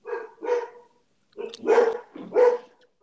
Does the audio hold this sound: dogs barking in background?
yes